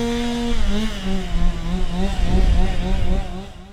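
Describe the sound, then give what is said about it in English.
Chainsaws cut massive trees uprooted by a tornado in damaged neighborhoods around Little Rock; the engine drones steadily for several seconds, its buzzing pitch rising and dipping as it revs and bites into wood, loud with a rough, rumbling low end. “By Sunday, the sound of chainsaws cutting massive uprooted trees in impacted neighborhoods everywhere.”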